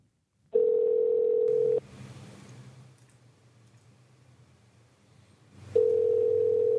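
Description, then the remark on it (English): A steady telephone dial tone hums for about a second, breaks off into a stretch of quiet line hiss, then comes back loud and unchanged near the end, as a number is typed in to place a call. “So bear with me as I type in this number to try and call”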